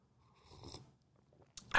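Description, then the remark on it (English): A person takes a quiet, slurping sip of hot coffee, with soft wet mouth sounds and a swallow, then a brief sharper burst at the end. No one speaks. “I'm having a little sip of coffee here.”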